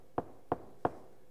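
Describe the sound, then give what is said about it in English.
Three sharp, evenly spaced knocks on the door of a home, clear, with short hollow thuds and nothing else around them. “And then you hear this at the door.”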